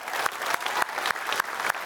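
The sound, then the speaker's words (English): Steady audience applause in honor of those who have served in the military, a dense wash of many hands clapping at a fairly even level, with a few sharper individual claps standing out from the crowd. “And so some of you don't clap.”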